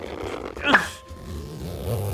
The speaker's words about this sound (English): The zipper is stuck. Pull harder!